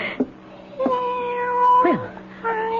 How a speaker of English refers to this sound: Quiet out there, cat. Cat, go away. Honestly, cat, I will not let you in my house. Well, where are you? After all that racket, where are you? Cat? Gone off to howl at somebody else. Well, good. All that meowing.